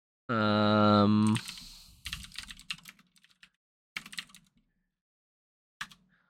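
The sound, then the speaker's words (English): Quick bursts of typing on a computer keyboard, a web search for alternative computer keyboards, crisp, with clicks clustered then trailing off into isolated keystrokes, following a short loud humming tone at the start. “Can you give that a quick Google?”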